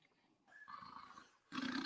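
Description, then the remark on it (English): A knocked-out, unconscious man snores heavily, with a harsh, rattling breath followed by a louder, rougher burst. The guttural sound is loud, almost like a growl, with no talking. “Yeah, he's snoring.”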